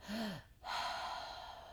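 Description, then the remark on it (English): A deep, audible breath drawn in through the mouth into the stomach and chest during a breathing meditation, starting with a short voiced catch, then a brief pause and a long, steady airy rush of air, fairly loud, with no talking. “It's breathing through the mouth. It's a deep breath into the stomach, into the chest, and then out for two beats, right?”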